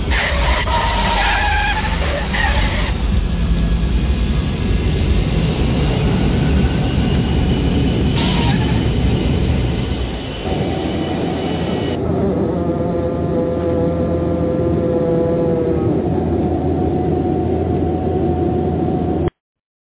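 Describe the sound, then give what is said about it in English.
A large airplane landing: a loud, continuous roar with a screeching, skidding edge early on, then settling into a steady whining engine hum with sustained tones until it cuts off. “Ladies and gentlemen, that's the sound of that big-eyed bird landing on the ground.”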